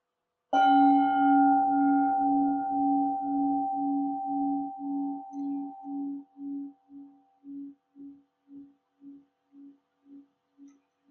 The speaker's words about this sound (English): So let's now invite the bell, and after three ringings of the bell, I will start the guided meditation.